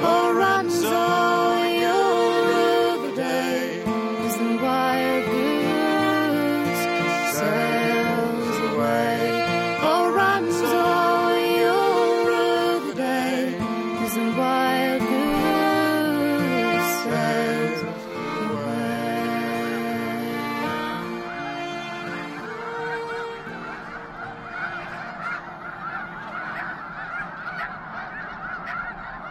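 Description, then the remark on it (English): A huge flock of snow geese on migration in the Rainwater Basin region of Nebraska, recorded by Lang Elliott and Ted Mack, calls continuously, hundreds of overlapping honks forming a loud, dense clamor that swells and thins slightly toward the end, with no talking. “We leave you this week with the sounds that snow geese make, lots of snow geese.”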